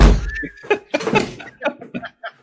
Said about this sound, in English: I have to shut the door, so hold on.